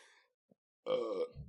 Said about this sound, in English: That's the Moon Man right there, folks. If you want high quality burpage, I recommend the Moon Man from New Glarus.